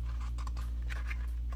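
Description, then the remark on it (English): A few soft, papery rustles, like a book page being turned, sit over a steady low hum, with no voices. “Every time you turn a page, we get closer to the monster at the end of this book.”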